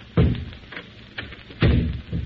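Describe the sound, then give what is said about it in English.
Two heavy wooden thuds about a second and a half apart, the doors of a study in a chateau being shut one after the other, with softer knocks and rattles between them and no voices. “A moment. I close the doors.”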